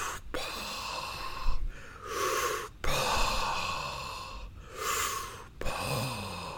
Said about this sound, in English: The dog is snoring at my feet, and every time he does, I see my volume go, it's picking it up. Maybe like a cool sound effect in the background is what you'll have.